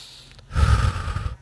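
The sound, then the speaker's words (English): A single audible breath during a breathing meditation, a soft rushing of air that swells and fades over about a second, heard alone with no talking. “Your breathing is the object.”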